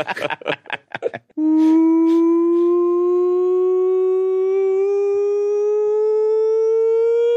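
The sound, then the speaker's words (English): A brief burst of talking, then a loud siren sound effect cuts in and holds as one sustained wail, its pitch climbing slowly and steadily until the end. “That is the nonsense siren.”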